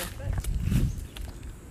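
Footsteps crunch on dry leaves, a few crisp, irregular crackling steps over a steady low rumble.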